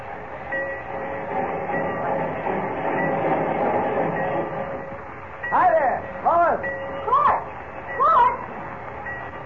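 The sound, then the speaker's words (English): A steady, rumbling din of a train rolling through the Central Railroad Station, followed near the end by four short rising-and-falling squeals or whistle tones standing out above the noise. “Mr. White told me to meet you down here at the Central Railroad Station.”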